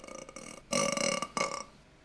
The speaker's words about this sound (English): Oh, this is like a little subtle burp. Was that a little burp?